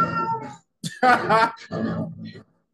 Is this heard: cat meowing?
yes